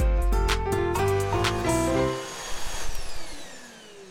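A vacuum cleaner motor whirs loudly with shifting pitch for about two seconds, then switches off and winds down into a fading hum with a few soft clunks.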